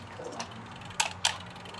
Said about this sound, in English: Okay, so now I'm going to put it in a 425 oven for about 10 minutes so that the crust gets brown. All right. And I'll put the timer on.